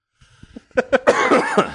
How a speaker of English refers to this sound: I'm coughing.